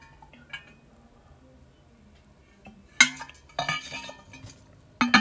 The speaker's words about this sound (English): I'm going to take a little chug of water, so just enjoy some ASMR.